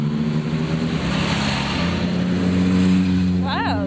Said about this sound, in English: Some motorcycles. So you get some stereo action.